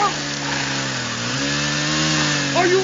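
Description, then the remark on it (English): A chainsaw engine runs loud for the whole stretch, a steady buzzing drone whose pitch wavers slightly as the throttle shifts. “You had a chainsaw on, right, bitch?”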